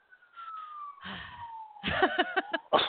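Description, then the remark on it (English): A siren's long, steady wail slowly sliding downward in pitch, with bursts of people talking over it toward the end. “Hear that siren? They're coming to get me because I'm dying of the corny syndrome.”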